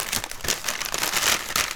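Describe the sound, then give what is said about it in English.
A snack bag crinkles and crackles steadily as thin garlic croutons are put back into it, a dense, bright rustle of plastic with sharp little bursts throughout and no voices. “And try to put them back in the bag.”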